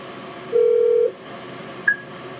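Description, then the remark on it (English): Outgoing phone call tones as a caller clicks to bring someone into a call: one steady electronic beep lasting about half a second, followed shortly by a brief, higher-pitched blip, over faint background hiss with no one talking. “I just clicked to bring you in. You just got to accept it.”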